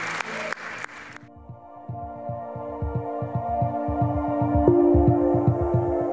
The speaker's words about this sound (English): Can we give these four individuals that raised their hand a huge round of applause? Yeah.